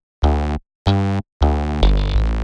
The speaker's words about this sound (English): In this case, I've chosen a bass sound with a fret buzz. Let's hear it one more time.